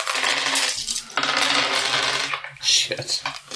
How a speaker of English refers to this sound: So roll all the dice in front of your character and total them by color, just like at the tilt.